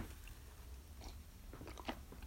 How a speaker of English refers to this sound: God, I need to get a sip of water.